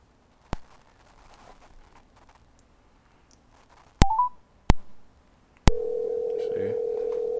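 Sharp telephone clicks and a brief rising beep, then a steady electronic phone tone sets in and holds to the end, loud and close, with faint background murmur early on.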